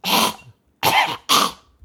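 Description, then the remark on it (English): A person imitates a woman's dry, hacking cough: three harsh, loud bursts, the first longer, then two quick ones after a brief pause. “some woman walked right behind me and had this disgusting hacking cough”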